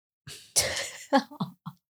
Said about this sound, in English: Oh man, sorry guys, coughing in your ears.